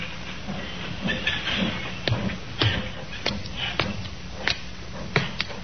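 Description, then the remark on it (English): Trains rumble through a railroad yard at Alnmouth in the coal district around Newcastle, with a steady hissing roar broken by sharp metallic clanks and knocks at uneven intervals, moderately loud, with no one talking. “A puzzle which began in the railroad yard at Alnmouth in the coal district around Newcastle.”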